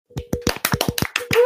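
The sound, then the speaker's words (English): A brief round of applause welcoming a guest: about nine sharp, fairly loud hand claps at a quick, slightly uneven pace over a steady low hum, with a voice starting up at the very end. “Give it up, everybody, a round of applause for”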